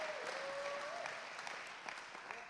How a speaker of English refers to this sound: Come on, you can clap for him. We like to say thank you to people.